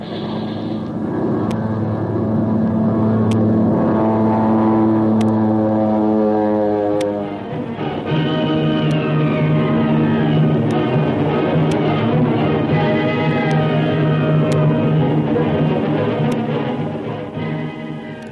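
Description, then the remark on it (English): A stolen Nazi plane's engine roars loudly and steadily as it dives toward the water, its droning pitch bending and shifting, with faint sharp ticks of machine gun fire from another plane popping through at intervals. No voices. “diving to escape the machine gun bullets from one of our own planes, pushes his stolen Nazi ship down faster and faster.”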